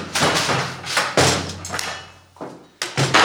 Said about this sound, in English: Quick, in here! Oh. Barricade the door. Okay.